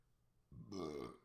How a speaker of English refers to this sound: Had to burp, excuse me. I'm not going to cut that out.